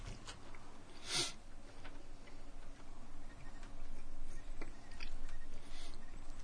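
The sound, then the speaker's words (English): Someone quietly chews an espresso-flavored candy, with a few sharp crunchy clicks scattered among softer mouth sounds and no talking. “Let me finish chewing this one.”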